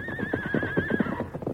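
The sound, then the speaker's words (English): A stagecoach horse whinnies loudly in a long, wavering cry lasting about a second, with the rapid clatter of hooves pounding underneath as the horses run away, continuing after the call fades. “Stage horses run away.”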